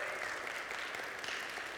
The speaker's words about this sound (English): And we have people at Fisk Street Baptist Church being saved every week. We can clap for that. Let's clap for that.